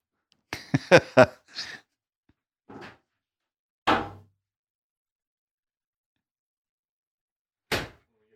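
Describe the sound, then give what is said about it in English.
A bird bangs sharply against a structure while going after bugs: a quick burst of four or five knocks, then three more isolated thumps spaced irregularly, with silence in between and no talking. “Yeah, they sit there and they can't just eat the bug. They got to bang on the structure.”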